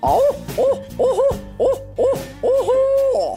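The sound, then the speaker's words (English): A person imitates a barred owl's rhythmic hooting: six quick, rising-and-falling hoots in a steady pattern, closing on a longer drawn-out call. Clear, with no talking. “So this is the hoot of a barred owl.”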